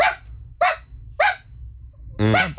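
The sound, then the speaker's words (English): A person imitates the deep, booming bark of a big dog: three short, evenly spaced woofs followed by a longer, drawn-out final bark, performed far away from the microphone. “I've heard …'s bark for years, and I assumed he was like a big dog”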